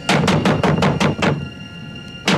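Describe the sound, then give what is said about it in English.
In the film Pumpkinhead, a man pounds rapidly and heavily on the wooden door of a cabin: six loud bangs in quick succession, a brief pause, then another hard bang. The blows are forceful, with no voices. “before we meet them, there's a long prologue where we see the backstory first of what we come to learn is Lance Henriksen's character as a child witnessing the Pumpkinhead creature taking the life of a man who had been banging on the door of a cabin.”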